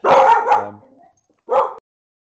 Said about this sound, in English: Sorry about that. I was muting myself because the dog is barking.